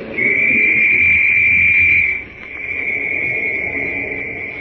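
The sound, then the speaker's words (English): A police whistle is blown loudly in one shrill, piercing, long unbroken blast that rings through a valley, holding a steady pitch for several seconds and dipping slightly in volume partway through, with no voices. “Shrill and sharp, the whistle rings through the valley”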